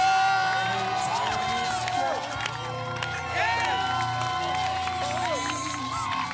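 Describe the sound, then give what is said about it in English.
A large audience claps and shouts together, a loud, sustained roar of overlapping voices with scattered sharp claps running through the whole stretch. “Every plot, every agenda, every calculation, every demonic vision, anything they wished, by your clap, by your shout.”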